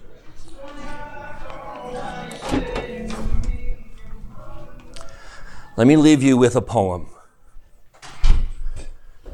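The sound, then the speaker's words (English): A door is pushed shut with a short, solid thud, preceded by some shuffling and handling noises, while a man speaks before and between the sounds. “Let me leave you with, let me get that door.”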